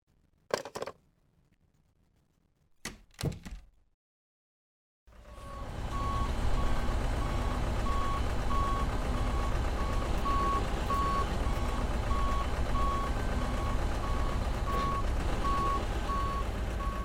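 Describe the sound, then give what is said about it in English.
A truck carrying a calf: its engine rumbles loudly while a steady reversing alarm beeps at a regular pace, preceded by a couple of sharp metallic clunks in near silence. “I have the calf on the truck.”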